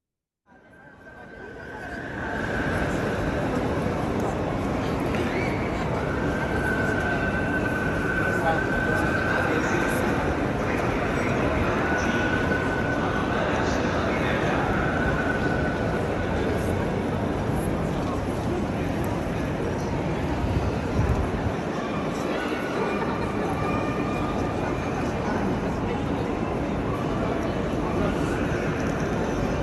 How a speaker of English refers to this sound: And so anyway, these are some sounds arriving into Milano, sounds from on the train and in the station. So enjoy these surrounding sounds, and we'll be back afterwards to say goodbye.